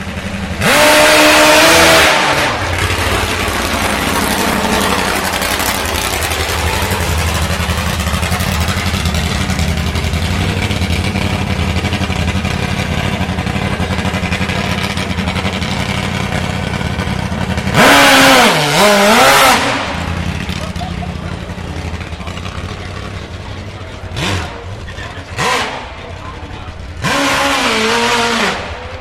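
A motorcycle dragster's engine revs hard up a hill in loud, roaring bursts with rising pitch, separated by a steady, throaty idle drone, then screams up again near the end.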